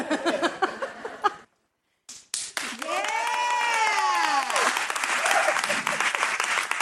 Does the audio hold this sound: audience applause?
yes